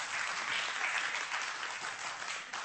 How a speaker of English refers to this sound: Oh, you can applaud, that's okay.